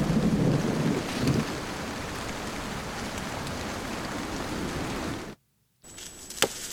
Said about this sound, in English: Suddenly, the sky got dark, and down came the rain. Down came the hail.